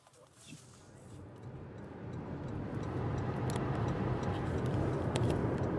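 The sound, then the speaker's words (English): A car's turn signal ticks in a steady, regular rhythm inside the vehicle, driving in a line of about six cars with blinkers on, headed to public hearings, over a constant low engine and road rumble that grows slightly louder. “We've got our blinkers on and we're headed to the public hearings.”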